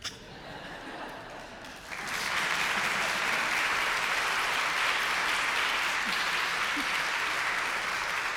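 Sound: audience applause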